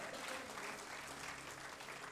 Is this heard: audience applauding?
yes